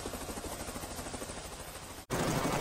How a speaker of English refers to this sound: The helicopter rocked into place on the pad.